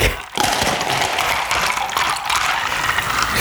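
A steady, continuous pour over an edge, a loud, even rushing hiss that begins after a brief pause and runs unbroken to the end, with no voices.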